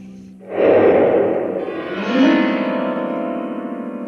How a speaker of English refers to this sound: I once shot a firecracker off in a grand piano.